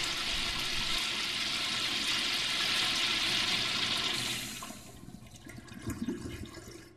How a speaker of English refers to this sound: Give me a toilet flush, Raj. Thanks, buddy. I just flushed Cheryl Crow's idea right down the toilet.